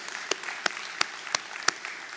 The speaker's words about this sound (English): And the law play, that's worth clapping for, amen.